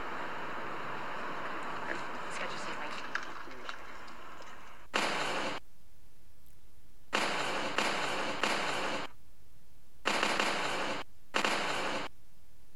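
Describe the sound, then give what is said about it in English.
Loud, crackling bursts of staged gunfire sound effects from films that sound like fireworks going off, about five separate volleys, each lasting under a second, with short pauses between them after a quieter, busy background stretch. “Sounds like fireworks, doesn't it?”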